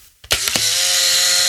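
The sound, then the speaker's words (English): A Polaroid SX-70 camera motor kicks in after a few sharp mechanical clicks as an old film cartridge is inserted, then runs as a steady, fairly loud whirring with a faint high whine, in an office at night. No one speaks. “And I've got an old cartridge here, which I'll put in. It sounds a little bit sick.”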